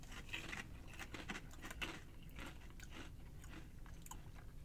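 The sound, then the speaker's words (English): Thin chili-flavored potato chips with sea salt being crunched and chewed, a steady run of crisp, crackly bites and munching with no talking, fairly even in loudness throughout. “I think, though, we're very biased towards a thicker, crunchier chip.”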